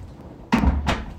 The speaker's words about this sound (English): I'm just gonna close the door.